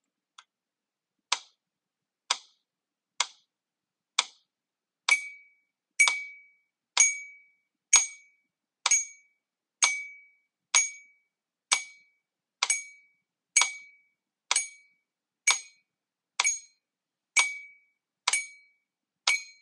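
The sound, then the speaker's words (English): A metronome, played as a timing guide for a clapping or tapping exercise, ticks steadily about once per second, roughly twenty crisp clicks in a row; after the first few, each tick carries a brighter, ringing metallic tone. No one speaks. “So I'm going to play the metronome again and see if you can clap or tap exactly the same.”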